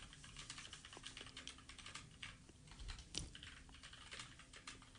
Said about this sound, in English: Do you hear the typing? It's just powerful. The man has like magic fingers.